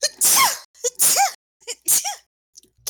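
Three loud sneezes in quick succession, each a sharp burst with a breathy, airy blast, separated by brief quick inhales.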